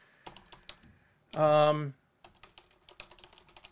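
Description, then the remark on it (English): Rapid, irregular clicking of fingers typing on a computer keyboard, fairly quiet, as someone quickly types something in to look it up, briefly interrupted midway by a short sustained vocal hum before the keystrokes resume. “I'm just typing it in real quick to see if maybe I've forgotten or missed it or something along those lines.”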